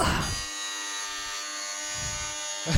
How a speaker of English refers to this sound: That says dentist drill. Mm-hmm. Doesn't sound like it at all. No, it still sounds like a truck horn thing.